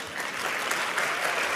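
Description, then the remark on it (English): A studio audience applauds in a steady, dense patter of many hands clapping, holding at an even, fairly loud level throughout with no voices on top. “And applause is a tradition.”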